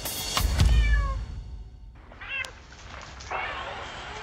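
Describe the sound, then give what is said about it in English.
Several high, thin kitten meows from a played video of a man killing kittens sound over a noisy background, with a low thump early on. The cries come in short bursts, moderately loud and slightly tinny, as if played through a small speaker. “this video, this man killing kittens, ended up on Facebook”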